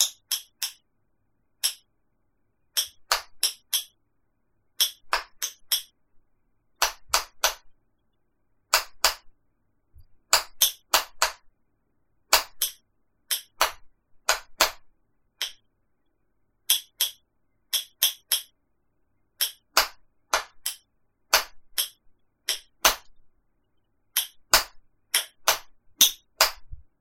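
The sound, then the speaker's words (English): Sharp, dry tapping in irregular clusters of quick clicks separated by short pauses: a greeting message ending with a period, tapped out in Morse code on taps, with no voices over it. “And I say period because you have to tap out the period, which is actually longer than any of the letters that are in the message. But so I tapped it out on taps.”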